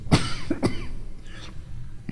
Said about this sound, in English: why don't you finish reading for me while I just cough right into the mic.